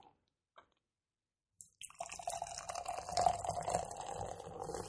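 A couple of faint clicks, then RAR Country Ride beer pours steadily into a glass, a continuous splashing, fizzy gurgle that holds to the end with no talking.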